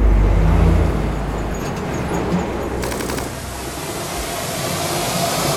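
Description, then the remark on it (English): A truck rumbles along steadily, its deep engine drone and road noise filling the scene, with a brief rattling clatter partway through and no voices. “Into the truck, come on.”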